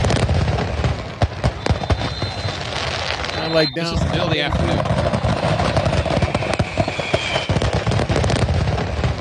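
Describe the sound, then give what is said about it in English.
A rapid string of sharp, crackling fireworks bursts going off in the afternoon in Ocean City, popping steadily throughout with a few louder bangs in the middle, while a person speaks over the din. “There were so many videos of this Ocean City fireworks.”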